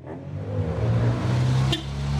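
A car engine runs steadily in Bebop's car park with a deep, low rumble that holds at a constant loudness, with a brief sharp click partway through and no voices.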